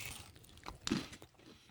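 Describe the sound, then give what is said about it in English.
A crunchy bite into a cheese-ring pizza crust close to the microphone, one sharp crackle followed by a few softer chewing crunches, fairly quiet with no talking. “I'm going to go for a bite close to the mic to get this, get this in ring. There, get the crunch.”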